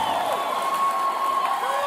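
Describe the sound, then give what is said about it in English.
A large live audience in Long Beach cheers and applauds in a dense, continuous wash of clapping and whoops, with a few higher shouts rising above the steady roar. “We got a big crowd here.”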